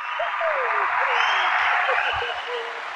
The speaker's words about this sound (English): You got to give it a round of applause because you all said it was one of our top episodes, so we appreciate you.